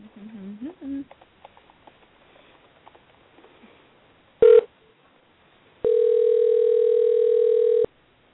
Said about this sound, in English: That was my phone going off because I just Ooh. Yes, I just called myself because I don't exactly know what phone number pops up.